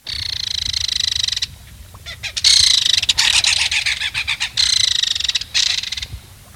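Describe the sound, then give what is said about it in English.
A belted kingfisher's harsh call, the kind given by bachelor males: loud, grating, rasping bursts repeated several times, some long and buzzy, others broken into quick rattling pulses, with no one speaking. “A final call it gives is a harsh call, given by bachelor males to convey that they are ready to get aggressive and fight over territory.”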